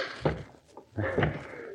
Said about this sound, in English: As we return to them now in the ghostly dawn, they are still hammering their fists on the door in a fit of panic, still shouting hopelessly for help.